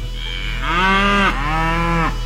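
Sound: cow mooing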